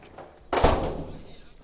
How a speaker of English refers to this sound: I think it's time to go. Close the door, girl.